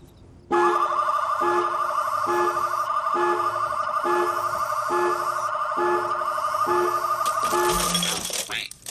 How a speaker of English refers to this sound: So if somebody stepped inside that proximity sensor, it would start triggering the alarm, right?